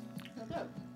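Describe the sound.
Wet crunching and chewing of food into a microphone, a few uneven bursts over about a second, mixed with a low voice murmuring underneath.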